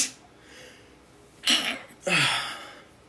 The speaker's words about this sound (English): I'm gonna sneeze.